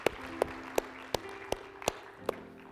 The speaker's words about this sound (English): If you give the Lord a hand clap with those that are making that prayer, that decision today. We love you, Jesus.